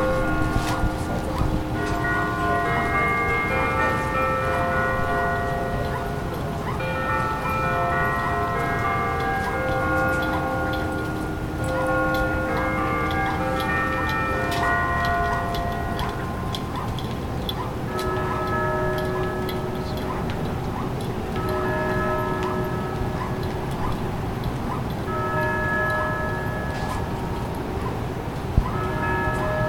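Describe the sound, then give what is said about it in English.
Bells ring continuously in a loud peal at the Ferry Building in San Francisco in the morning, their overlapping strikes and lingering tones blending into a steady, resonant wash for the full half minute. “Oh, ooh, bell break.”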